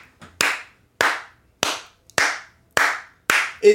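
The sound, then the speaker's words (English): A single person stands up from a chair and claps their hands six times at a slow, steady pace, each clap sharp with a short decaying ring, followed by a brief clunk at the end. “If you guys are listening to the podcast, that was a stand and clap. I stood, I removed my batol from the chair and I stood and clapped.”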